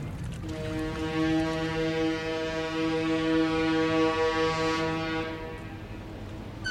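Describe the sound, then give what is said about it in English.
At dawn on a New York City waterfront, a long, deep ship's horn blasts steadily for about five seconds over a low, rumbling background, then fades into quieter ambient noise as another faint horn begins. “Dawn, the waterfront.”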